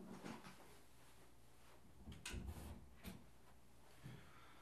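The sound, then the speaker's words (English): An office door in a house is opened: a soft rattle, a solid clunk of the latch, then a lighter knock a moment later, with faint shuffling movement around it and no talking. “Just had to open my door because it's boiling hot in this office.”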